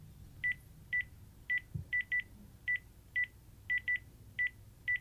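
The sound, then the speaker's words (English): A house phone beeps repeatedly, short sharp electronic tones in an uneven rhythm, about a dozen in five seconds, like keys being pressed, with faint room noise underneath. “It's a house phone.”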